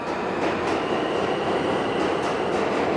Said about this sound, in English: So, what do I spy? The subway.